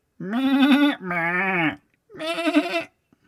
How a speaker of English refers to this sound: It was just so unusual and different that it never failed to provoke giggles and silly impressions of goats. Meh! Meh!